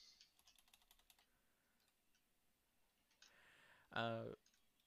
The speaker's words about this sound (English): Well, I mean, I have the power of the computer right in front of me, you idiot. Does it tell you how to say it? Yes, I'm typing in how to pronounce his name.